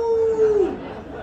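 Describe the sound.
A man gives a short imitation of a wolf howl: one steady voiced note lasting about half a second that dips slightly in pitch before cutting off, followed by quiet background noise.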